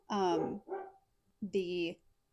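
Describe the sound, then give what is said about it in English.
A dog, the speakers' pet Nella, barks three times, loud and drawn out, with a brief gap between the first two and a longer pause before the last. “Barky, barky. It's our dog.”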